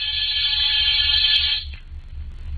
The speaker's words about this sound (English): After disturbing 7 occupants of 7 different apartments and getting 7 nasty comments, I rang one buzzer.